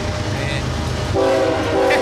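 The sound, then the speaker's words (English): A very long train rumbles steadily past, and partway through its horn blares a sustained, loud chord over the continuous rolling noise of the cars. “It's a very long train, guys.”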